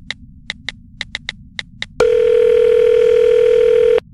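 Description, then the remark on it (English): About eight quick, sharp clicks like keypad presses as someone phones a hotel manager, then a loud, steady electronic phone tone that holds for two seconds before cutting off. No one speaks. “Okay, I keep calling him and there's nothing.”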